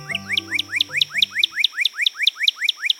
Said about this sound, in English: Even without taking a poll, is there any doubt about the identity of America's best-known red bird? Surely it's the cardinal, or as you'll find in a bird book, the northern cardinal.